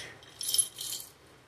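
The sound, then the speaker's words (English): A brief, fairly quiet jingle of keys on a keychain, two short bursts of bright metallic shaking lasting under a second, with no one talking. “How many keys do you guys have on your keychains?”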